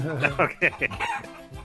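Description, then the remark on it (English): Chickens cluck and a rooster crows, a quick series of bright, harmonic calls overlapping in a lively burst lasting under two seconds. “I don't see them in the studio. Well, we're getting ready for a chicken dinner.”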